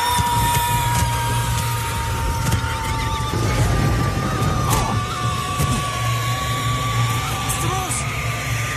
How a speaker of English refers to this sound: Yes, those are the sounds of horses and other barnyard animals going ballistic because they are witnessing a demon.